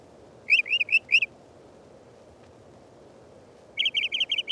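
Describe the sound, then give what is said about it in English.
A mockingbird sings a clear phrase four times in quick succession, pauses, then switches to a different rapid phrase repeated several times over faint background hiss. “The Mockingbird is a favorite, singing an ever-changing medley, often repeating each phrase 3 to 5 times.”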